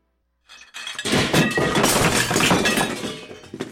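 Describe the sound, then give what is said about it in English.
A tray of porcelain crashes down, a loud burst of shattering and clinking pieces that rings on for a few seconds before a final small clatter as fragments settle. “But the sounds of the tray falling down with all the porcelain ware was so loud that made them stop the intense kissing and look to the maid, who was embarrassed and quickly bent down to pick up the mess.”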